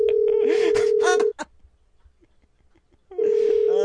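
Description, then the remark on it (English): A phone rings in two long bursts separated by a quiet pause, its steady electronic tone fairly loud, with some brighter clattering noise layered over the first ring. It is an incoming call to the show from Survivor: One World contestant Christina Cha. “Should we build it up a little bit and just let the phone keep ringing?”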